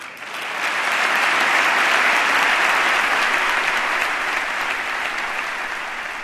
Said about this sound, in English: Among those applauding, Ohio Senator Sherrod Brown, who likely faces a tough re-election fight, he holds out hope for a more cooperative spirit.